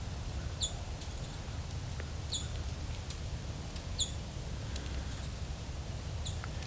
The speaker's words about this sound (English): The following was recorded in both Valens Lake Conservation Area and in Dundas Valley Conservation Area. So I found an American tree sparrow calling here. This is one of our winter species.